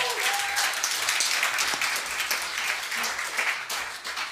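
Audience applause fills the whole stretch, a dense, steady wash of many hands clapping at once, bright and fairly loud, with a brief whistle-like tone near the start.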